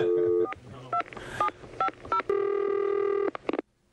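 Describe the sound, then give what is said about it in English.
A telephone number is dialed to call a dog's owner about her found dog: several short two-tone beeps in uneven rhythm, followed by a long steady tone. No one speaks. “Well, I'm going to call and say that we found the dog, and we want to bring it back to her now.”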